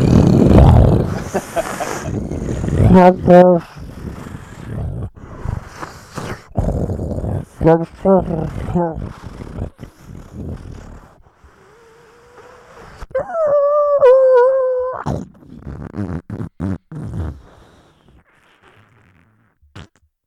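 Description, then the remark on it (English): A man imitates a motorcycle with his voice, growling and revving in rising bursts, then holding a high whining pitch before the sound sputters and fades away as if riding off. “I'll give you guys a call when I'm on my motorcycle.”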